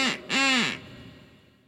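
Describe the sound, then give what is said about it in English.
Two loud, nasal quacks from a duck whistle, a short one then a longer drawn-out one, alone with no talking, trailing off into a faint echo. “They backed me up and they would be a duck whistle.”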